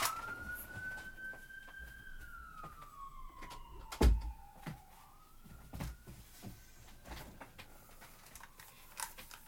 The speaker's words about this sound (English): Yeah, there was like an ambulance like ambling its way through my waveforms just now.